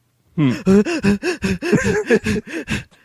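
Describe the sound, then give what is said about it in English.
A voice imitates Miles Dyson's Lamaze breathing: about ten quick, rhythmic, voiced breaths in a steady pant, fairly loud, with no other talking. “The Miles Dyson Lamaze breathing.”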